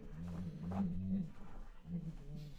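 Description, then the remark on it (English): A hungry dog, Gugnir, grumbles in low, throaty rumbles, one long drawn-out growl followed by a shorter one after a brief pause, fairly quiet. “You're hearing the subtle sounds of Gugnir's grumbling tongue.”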